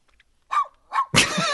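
A dog gives two quick barks in a row, followed by a louder, harsher burst of noise that runs to the end, with no talking.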